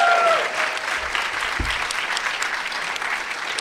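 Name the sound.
audience applause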